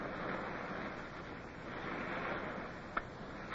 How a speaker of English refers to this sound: The land breeze caught us, and then we heard the swell of the surf. And then we were in the small boats heading in towards the beach at Scotchman's Bay.